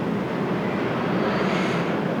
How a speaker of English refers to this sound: Notice how the waves continue crashing on the shore.